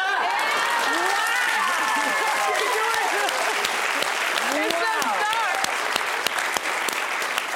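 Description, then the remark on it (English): A game show audience claps loudly and steadily to vote for the winner of a game, with dense continuous applause mixed with whoops and shouted cheers rising above it throughout. “Whoever gets the most applause is our winner.”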